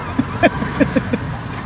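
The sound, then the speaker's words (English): Car door locks engage automatically as someone sits in the car, in a quick run of short mechanical clunks, about five in a row, moderately loud against a quiet background. “But when you sit in the car, as we just heard, it locks the car.”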